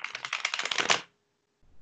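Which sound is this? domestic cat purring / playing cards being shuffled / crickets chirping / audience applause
playing cards being shuffled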